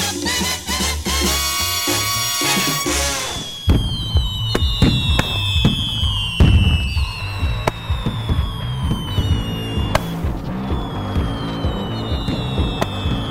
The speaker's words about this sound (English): Celebrate the 4th of July. Got my fireworks, shoot them in the sky.